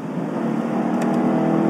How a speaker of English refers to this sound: He's going to jam the gas pedal now. But, okay, but you know, and here's the thing. It sounds much more boss than the pickup.